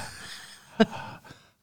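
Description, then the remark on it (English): Exaggerated, deliberate breathing: a soft airy rush of breath with one short, sharp voiced catch in the middle, then a fainter exhale trailing off. Nobody speaks. “You know, is that your breathing demonstration? That's my breathing demonstration.”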